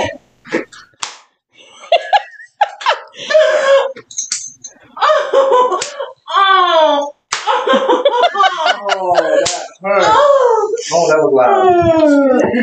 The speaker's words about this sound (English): Oh, that was loud. So how are those spankings